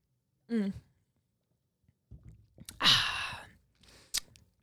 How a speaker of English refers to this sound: Let me take a sip.